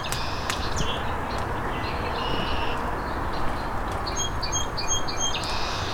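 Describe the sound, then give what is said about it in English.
Short, high chips and tweets come in scattered bursts from palm warblers, set against a steady rushing background of wind or outdoor noise; no one speaks. “Another palm warbler.”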